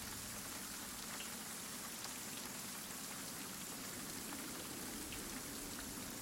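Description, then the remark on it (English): Steady rain falls outside a palace, heard from inside it: a continuous dense hiss with scattered droplet taps, fairly quiet, with no voices. “As you enter into the antechamber proper, the sounds of the rains outside seem to have been reaching even into a lot of the areas of the palace you've been walking through, but that falls away”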